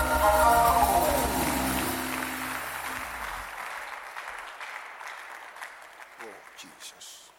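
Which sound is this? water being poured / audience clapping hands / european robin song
audience clapping hands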